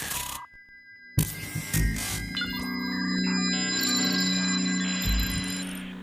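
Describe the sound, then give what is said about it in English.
An old mobile phone powering on: a sudden burst of bright electronic beeps and tones, then a sustained, chiming startup melody over a low hum, with high twinkly notes near the end. “So let's boot up that way back when phone”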